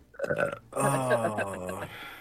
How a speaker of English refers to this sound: Man, you're gonna tell me to mute myself when I burp, and now...